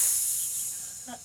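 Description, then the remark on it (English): A water snake hisses: a steady, airy hiss, continuous, fading slightly over about a second, with a brief faint vocal-like sound near the end. “Uh-oh. A water snake.”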